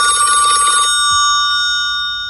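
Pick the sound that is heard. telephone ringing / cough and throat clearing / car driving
telephone ringing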